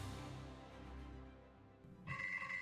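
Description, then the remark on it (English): A low, steady rumbling drone fills most of the moment, then a telephone abruptly starts ringing near the end, a bright, loud electronic trill cutting in. “Again with the phone?”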